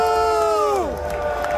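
A large baseball crowd in Seattle boos a player loudly in one sustained, drawn-out jeer whose pitch drops partway through, then holds lower over a background of crowd noise.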